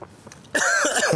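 A sudden, loud cough bursts in after a brief quiet moment, harsh with a raspy, throat-clearing quality, lasting well under a second.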